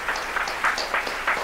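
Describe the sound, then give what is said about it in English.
An audience claps and cheers to vote by applause in a steady, dense wash of noise. Bursts of excited shouting rise and fall over the applause, fairly loud throughout. “We want to hear in claps, okay? Okay, for Freddie first.”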